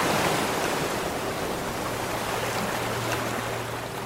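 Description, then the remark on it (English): Heavy ocean waves roar in a dense, continuous wash of surf, loud and steady throughout with no distinct breaks between swells and no voices. “And then waves, tremendous waves.”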